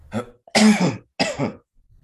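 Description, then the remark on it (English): Three harsh coughs in quick succession from a person recovering from a cold, the first shorter and lighter, the next two loud and rasping, with a throaty clearing quality and brief silences between them. “I'm like recovering from a cold right now. So I'm going to be coughing a lot during this podcast.”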